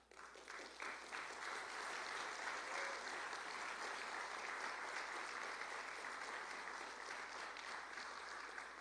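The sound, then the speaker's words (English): A church audience breaks into sustained applause to publicly honor its pastor, a dense, steady wash of many hands clapping that holds at an even level throughout without any voices rising above it. “I should have said, hold your applause, because we're going to do that again in just a moment here.”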